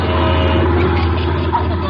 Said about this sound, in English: A bunch of oil trucks coming through. You better get out of the way.